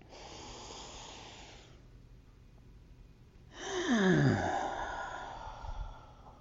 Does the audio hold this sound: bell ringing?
no